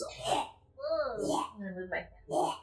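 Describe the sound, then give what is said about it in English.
A person's voice mimics a cat dry heaving: three strained, throaty retching bursts with warbling, gagging tones in between, fairly loud. “So it walks towards the center of the room and very gracefully hops up onto the podium and starts dry heaving.”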